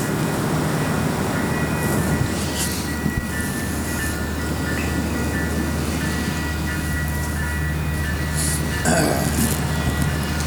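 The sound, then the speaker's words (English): A steady, loud rumble of a passing train fills the whole stretch, with low droning hum, faint metallic tones and occasional brief clatter, and no voices. “It'll start with a train.”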